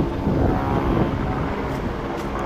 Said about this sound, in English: Here's another helicopter up there.